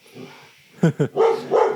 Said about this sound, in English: You might hear that. You might hear a dog. You might hear that.